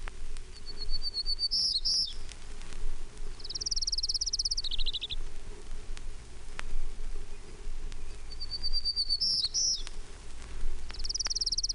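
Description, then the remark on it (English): A Townsend's warbler sings high, buzzy, wheezy phrases, repeated about four times with pauses between, over a steady low background rumble. “Townsend's warbler. One, three.”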